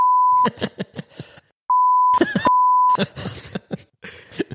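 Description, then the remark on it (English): A steady, high-pitched censor bleep cuts in several times, in short and longer bursts, over a person talking, so parts of the speech are covered by the flat electronic tone. “I need to bleep that out.”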